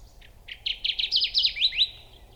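A Kirtland's warbler sings a loud, clear song of quick, chirpy notes that build in a rapid, bubbling run, heard alone over a faint low background hum.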